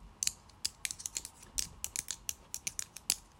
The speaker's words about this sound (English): That sounds like you're typing. No. Oh, my God, I know what that is, because you said it's you. Is it your crochet sticks? Sticks? They're actually called hooks.